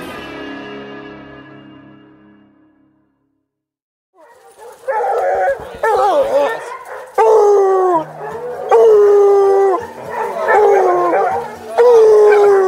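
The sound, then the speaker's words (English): A pack of free-ranging hunting hounds on a track bays and howls in overlapping, drawn-out cries with sliding pitches. The chorus is loud, following a fading tone and a brief silence. “Well, we was walking down through here, there's a bunch of dogs free ranging, and we looked down and seen the track, but they took off.”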